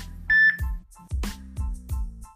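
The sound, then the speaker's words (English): A short, sharp electronic phone beep during a phone call, followed by a rapid run of lower buzzing tones that drop in pitch, repeating about four times at a steady rhythm, fairly loud, with no talking. “someone don't like you ringing the phone.”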